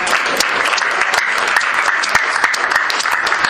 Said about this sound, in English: If you're on Ministry Team, could you stand up? Look at this, like, secret. It's like they're agents, secret agents. You're like, whoa. Okay, can everyone give a round of applause?